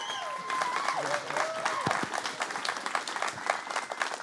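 A crowd applauds steadily with dense, continuous clapping, while whoops and rising, sliding cheers ring out above it in the opening seconds before the clapping carries on alone. The audience stands to welcome a pastor onto the stage at a church service.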